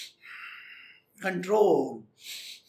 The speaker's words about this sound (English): You know, I'm sorry, I have to do a little acting over there. You're doing what is called as a deep breathing, trying to...